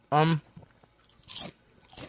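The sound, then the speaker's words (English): A brief voiced sound, then two sharp crunches of a spicy kettle-cooked potato chip being bitten, spaced about half a second apart, with quiet between them. “I can't tell if that's a pickle or that's a chip. I got some heat. That's a chip.”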